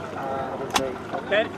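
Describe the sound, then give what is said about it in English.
A boat engine drones steadily on the water for the whole moment, a constant rumbling hum, with brief indistinct voices and a sharp knock breaking over it; the boat carries people, including children, who are being reached by rescuers at sea and are running out of fuel. “Can you please turn the engine off?”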